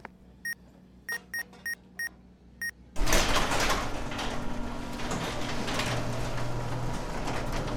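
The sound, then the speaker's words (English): Six short electronic beeps sound in an uneven sequence, then a sliding warehouse door bursts open with a loud whoosh that settles into a sustained mechanical hiss and rumble. “Well, the door works.”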